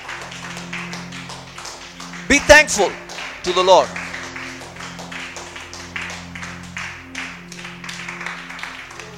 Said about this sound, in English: Now for 2 minutes, I want you to clap hands and thank the Lord for this word.